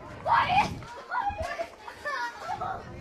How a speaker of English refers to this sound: Gotta love the little kids at a ballpark, always playing around. We got some kids playing hide and go seek or tag. Can't quite tell just yet, but it's always fun seeing the kids playing.